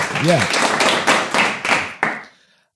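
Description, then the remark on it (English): A short burst of hand clapping applause over a Zoom call, fairly loud, with sharp claps landing in quick succession and a brief vocal cry near the start before it fades out. “You get the full applause.”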